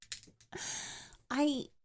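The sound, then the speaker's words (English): Dice rattle and clatter in a cupped hand, a few short clicky shakes and then a longer continuous jingle, followed by a brief voiced sound. “Could you stop jingling those Valley of dice?”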